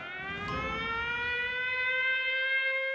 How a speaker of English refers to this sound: I remember the first day, the very first day, when city officials installed the warning sirens.